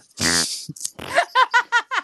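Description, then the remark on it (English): A loud, buzzy fart rips out up close, followed by a few shorter sputters and a quick run of rhythmic, squeaky puffs tapering off. “Them ducks are back, honey. Oh, they're ducks. Fucking barking spider.”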